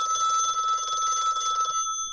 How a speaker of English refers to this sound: Phone's ringing. Where did I leave the phone? Where is it? Can't remember where I left the damn thing.